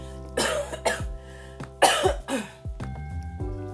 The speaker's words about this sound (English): I will more than likely sound stopped up, very extra vocally husky, or occasionally coughing during this very short podcast because I came down with the flu. Yeah, real sexy. Haven't had that in 14 years. Here's a cough coming on now. Hold on.